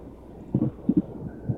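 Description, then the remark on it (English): Soft, low thumps over a steady road rumble as car tires roll across bumps in the road: a doubled thud, then a quick pair, then one more, muffled and fairly faint, almost like a heartbeat. “What about just bumps? Here, listen to the bumps.”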